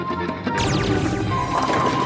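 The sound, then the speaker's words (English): Bowling pins crash down in a strike at the Apex City bowling zone, knocked over by Captain Laserbeam's laser: a sudden loud smash breaking into a busy, ringing clatter of tumbling pins that keeps rattling for over a second. “Excuse me, it's against the rules to use your laser to knock over the pins.”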